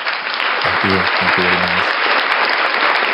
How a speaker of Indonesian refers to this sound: Jadi kita beri tepukan kepada Mr. JS.